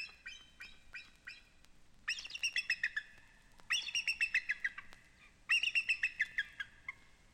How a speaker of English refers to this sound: And the sharp, proud cry of the emblem of our country, the North American bald eagle.